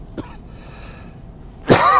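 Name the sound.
cough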